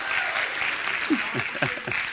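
An audience claps steadily in a dense, hissing wash of applause, with a few brief voiced shouts or cheers rising above it toward the end.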